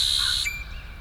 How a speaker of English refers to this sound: And the red-winged blackbird at the margin of a pond.